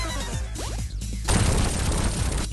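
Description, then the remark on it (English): A video game explosion effect, not from an arcade game: a few swooping electronic tones lead into a sudden loud, crackling blast of noise that rumbles on steadily until the end. “let's give you another explosion to listen”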